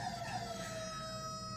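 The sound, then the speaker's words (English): A person, an award-winning professional bird whistler, whistles a bird call: one steady, piercing tone with bright overtones, holding its pitch with a slight downward glide, moderately loud and with no talking. “This guy just won an award for his professional bird whistle skills.”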